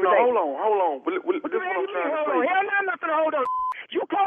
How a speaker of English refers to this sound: Hold on. You calling my phone?